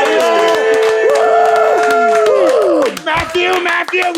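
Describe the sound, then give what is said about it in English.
A crowd claps steadily while loud, pitched cheers and whoops ring out over the applause, sustained for about three seconds before thinning into scattered shouts. “Let's see a round of applause over here.”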